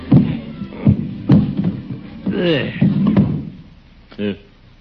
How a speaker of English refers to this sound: If you don't mind, I think I'll move my chair closer to the fire.